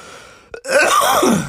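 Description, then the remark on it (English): A short catch of breath, then a harsh, raspy cough that rattles for about a second, fairly loud, with no talking around it, from a person with a lingering cough that won't go away. “There's a lot of songs I don't know, but I'm not even trying to sing right now because I have this cough that just won't go away.”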